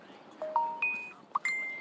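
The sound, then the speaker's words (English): Several bright electronic chimes ring in quick succession, overlapping tones of a phone notification sounding clear over a quiet background hiss. “Hear the notifications? I forgot to turn it off again.”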